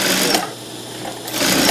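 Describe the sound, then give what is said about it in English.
A sewing machine whirs in short bursts of rapid stitching on fabric, loud, easing briefly in the middle before picking up speed again, with no voices; a fashion designer is sewing in Kaohsiung. “Fashion designer Sun Yizhi focuses intently as he cuts a piece of fabric before taking it to the sewing machine.”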